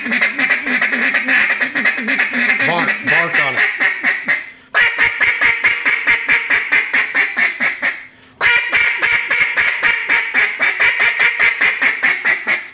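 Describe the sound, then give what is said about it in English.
A duck call blown in a rapid, continuous hard feeding chatter, loud, delivered in three long bursts separated by two brief pauses, with no talking. “So you can bark on it, you can feed on it hard, and then you could all of a sudden hear the ducks are coming.”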